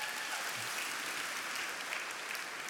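A crowd claps steadily throughout, a dense, even wash of many hands with no pauses or voices rising above it.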